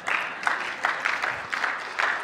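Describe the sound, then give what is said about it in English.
A church audience claps steadily for a couple of seconds for a church volunteer, a dense crackle of many hands that swells and eases in repeated waves at a moderate level, with no voices over it. “And I know, some of you are wanting to give him a big round of applause right now.”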